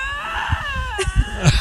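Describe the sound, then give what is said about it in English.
Two lynx, about 2 inches apart face to face, scream at each other, their high, wavering yowls rising and bending in pitch and overlapping, with short low grunts and thumps underneath. “What are these Lynx yelling about? Yeah, these are two cats with, they're maybe about 2 inches from each other face to face.”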